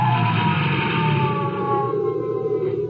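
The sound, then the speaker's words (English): A sheriff's Jeep siren whines loudly and continuously as the Jeep heads for the bottom of a ski run in Putneyville with its red flasher blinking, its steady wailing tone layered over a low engine rumble, with no voices. “Well, I got the Jeep started without too much trouble and headed for the bottom of the ski run with my red flasher blinking and the siren whining.”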